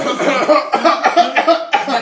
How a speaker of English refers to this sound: Coughs in Italian.